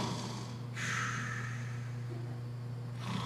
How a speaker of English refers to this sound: I don't know if I sound like that when I snore, but that's pretty awesome right there.